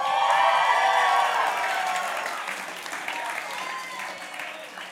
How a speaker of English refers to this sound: Someone's whistling. Who was that? They're whistling because I just turned 30 yesterday.